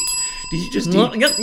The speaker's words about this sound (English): Did you just DJ bell me? I DJ belled you. If you know what I mean. And we're given the gift of the bell from Sweet Fanny Adams Theater.